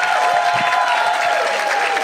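A crowd claps steadily for about two seconds, a dense, even wash of many hands with no pauses and no voices, holding at a fairly loud, constant level.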